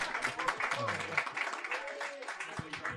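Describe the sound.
A burst of audience applause, dense and steady, with many hands clapping together at a fairly loud level for a few seconds while faint voices murmur underneath.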